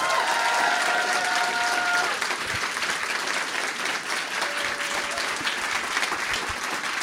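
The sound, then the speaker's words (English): An audience claps steadily throughout as a guest is welcomed, a dense, continuous patter of many hands at an even loudness, with a few faint tonal notes sounding in the opening seconds. “Now I realize that wasn't you clapping in the back.”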